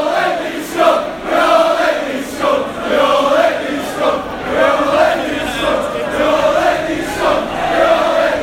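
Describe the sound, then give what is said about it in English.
A large crowd of United football fans in the away end chants together in a loud, sustained, tuneful rhythm, many voices rising and falling in unison with repeated swells every second or so. “As you can hear, United fans in the away end serenading the three teams at the eight more than anybody.”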